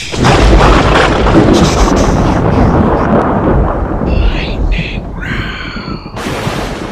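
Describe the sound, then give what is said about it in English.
A thunder sound effect played to open a lightning round: a loud crack of thunder rolls into a long, heavy rumble that fills the whole seven seconds, slowly easing off, with a few faint higher whooshing tones near the end. “Oh, we gotta make the lightning noise first.”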